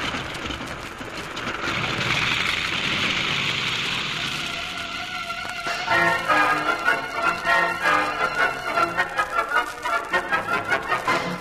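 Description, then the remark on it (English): A heavy downpour with howling wind, during a storm over the semi-arid island of Inagua in the West Indies, hisses steadily for several seconds, a dense wash of rain noise, before giving way to rhythmic music that carries through to the end. “have been caught in the downpour and are fighting their way against the howling wind”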